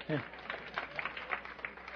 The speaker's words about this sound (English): Amen. Amen. Thank you. You can clap for yourselves.